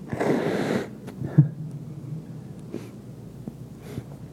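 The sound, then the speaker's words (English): A loud nose blow by a preacher during a church sermon, just before prayer: a rough, breathy burst for about a second, then a short sniff and quiet rustling and breathing afterward. No one speaks. “We'll pray in just a moment after I blow my nose.”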